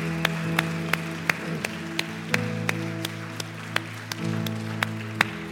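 Audience applause for five individuals who raised their hands: sharp, evenly spaced claps in a steady rhythm over sustained keyboard or organ chords that shift pitch partway through. No one speaks.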